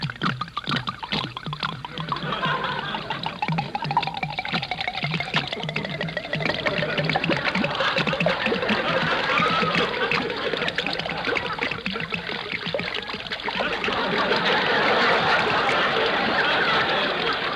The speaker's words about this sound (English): You go ahead and pour it into the mincemeat. I'll pour this bottle in, and then you pour another one in.